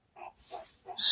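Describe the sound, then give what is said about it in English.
A zombie growls and breathes heavily: a few short, rough guttural snarls, then a loud, harsh rasping breath that ends the moment. No voices. “Walker's growling, breathing heavily.”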